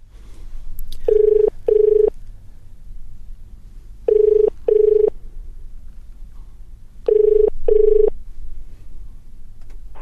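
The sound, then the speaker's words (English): A telephone ringing tone as someone phones a friend, repeating three times in a steady double-ring pattern, each pair of short buzzy beeps separated by a few seconds of quiet line hum, with no one talking. “Let me phone a friend.”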